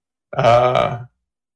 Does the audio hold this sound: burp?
yes